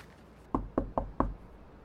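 Four firm knocks on the wooden front door of a house in a quick, even rhythm, fairly loud, with a short quiet pause before them and nothing else audible.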